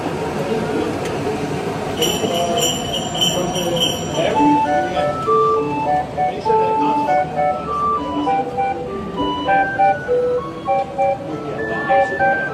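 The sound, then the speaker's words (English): A 37-note pipe organ with 9 bells and a snare drum, installed inside a Christmas tree in Boardwalk Hall, plays Jingle Bells from a pre-recorded selection in bright, steady tones, with bell-like chimes and light percussion joining after a couple of seconds over a noisy background. “They're playing a selection of Christmas tunes from its pipes and percussion, including Jingle Bells.”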